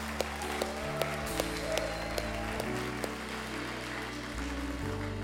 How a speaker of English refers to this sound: And can you just give a round of applause for those that said, "Hey, I want to get back on that pathway"? Come on, everybody stand. Everybody stand. Give it up for them. Come on, church.